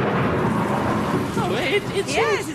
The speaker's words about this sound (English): Seems to be hailing